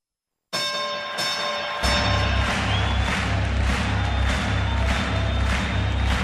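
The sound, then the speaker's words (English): A bell rings out with a few quick strikes, its bright tone hanging in the air, before a loud, steady crowd roar swells up underneath and carries on. “And like I said, ring the bell, ding, ding.”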